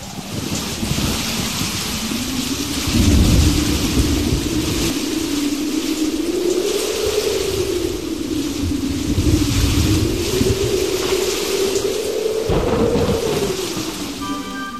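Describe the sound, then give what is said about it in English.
Steady, heavy rain pours down continuously, with deep rumbles of thunder rolling through in the low end, swelling around the middle and again near the end. No voices. “Will you listen to that rain, darling?”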